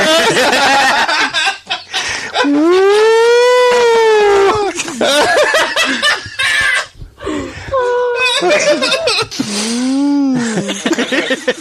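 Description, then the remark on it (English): A voice imitates a police siren with a long, loud rising-and-falling wail, then repeats a shorter wail after a brief pause, with laughter-like vocal bursts between them. “It's like a gay fucking police siren.”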